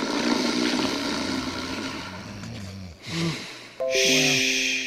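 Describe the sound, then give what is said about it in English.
Loud snoring, a long rasping, rumbling inhale followed by a shorter snort, then a high, steady whistling exhale to finish, like a cartoonish sleeper. “Let's snore.”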